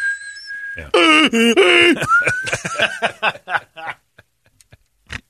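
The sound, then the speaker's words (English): A voice imitates a hearing aid's feedback whistle: a thin, steady high tone held for under a second, then warbling, groaning vocal squeals and a rising whine that break into choppy, fading bursts. “The whistling of the hearing aid was going.”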